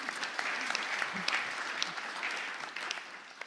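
A steady round of audience applause for a man about to share his testimony at a morning session, many hands clapping in a dense, even patter at moderate loudness for a few seconds, with no voices standing out.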